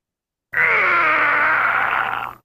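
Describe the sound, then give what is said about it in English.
A loud, strained groaning cry holds for about two seconds, a single sustained vocal effect with a slightly wavering, sliding pitch, cutting in abruptly and fading out at the end, with no talking. “That was the wrong scream, but we're going to go with it.”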